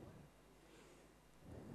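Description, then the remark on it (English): Steady, fairly quiet rain hiss fills the background, with low rumbling swells near the start and again toward the end; no one is talking. “What was that rain I hear?”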